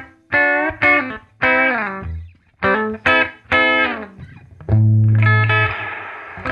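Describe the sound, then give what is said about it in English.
A Mercury 7 reverb pedal colors a series of bold, distorted electric guitar notes, each ringing briefly before the next, ending in a long, washy sustained swell. No voices. “The Mercury 7 is a it's a pretty versatile reverb-y thing.”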